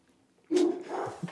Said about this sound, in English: And that might be our signal. The dogs are going nuts. What is it? The mailman's here? Probably, yeah.